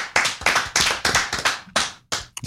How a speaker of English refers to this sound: All right. Clap it up. Clap it up. Clap it up. Clap it up.